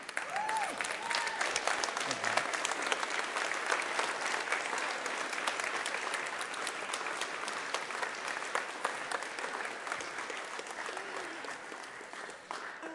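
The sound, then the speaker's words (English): Sustained applause from a large standing audience honoring a staff member's 20 years of service, a dense steady wash of clapping at even loudness for the whole stretch, with faint voices and cheers mixed in. “So if you would you stand and applaud her as she comes forward?”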